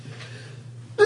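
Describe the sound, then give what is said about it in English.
A single sharp sneeze bursts out loud at the very end, after a stretch of quiet low background hum. “Bless you. Bless you.”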